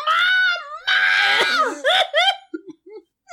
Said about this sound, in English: He was miraculously alive, his body twitching in a feeble attempt to rise. A fire creature jumped on Mario, who was now pinned to the ground and screaming in pain.